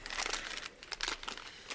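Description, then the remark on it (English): A plastic bag crinkles and rustles as someone struggles to open it, with irregular bursts of bright, crackly noise over nearly two seconds, fairly quiet and without speech. “I can't get in the bag.”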